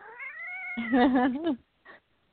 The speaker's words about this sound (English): Yeah, it's my cat. Are you fighting a tiger? No, he's just upset. He wants what he wants, and he's not getting it.